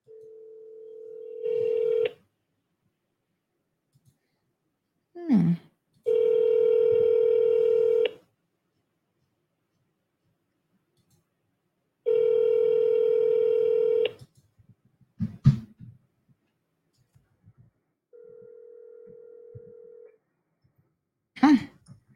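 A steady telephone tone sounds in bursts, joined by layered, buzzy ringback-style tones, with brief clicks and handling noises between them; no one speaks, and the tones are loud and close.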